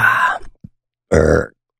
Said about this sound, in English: I don't know why. Burps start happening.